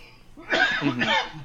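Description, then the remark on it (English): A sneeze breaks out in two quick, forceful bursts, each a breathy, voiced blast of noise lasting a fraction of a second, fairly loud against a quiet background. “God bless you.”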